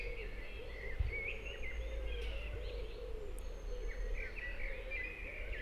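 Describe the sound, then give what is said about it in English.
A bird gives clear, flute-like whistled phrases in two bursts, rising and falling, over a steady low outdoor rumble. “Listen to that bird. It sounds almost flute-like.”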